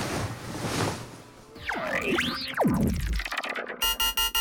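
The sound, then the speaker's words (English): A hazy rushing wash and swooping, warbling electronic tones give way to a loud electronic alarm beeping rapidly and steadily in short, evenly spaced bursts at the end. “Jop's eyes fluttered open to an incessant beeping sound.”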